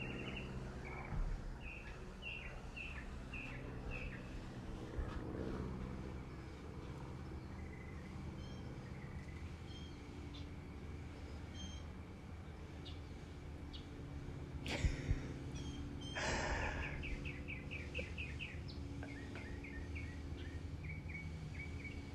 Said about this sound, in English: oh, look, you can hear the birds.